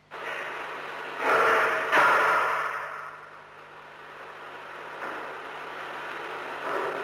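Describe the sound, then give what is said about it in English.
A muffled crash, like an object knocked over, with two quick clattering bursts early on, then a steady hiss and faint motor hum carrying on afterward; heard on a cassette tape recording made in a building, the hum coming from the cassette recorder motor. “And then, there was a crash, as though something had been knocked over.”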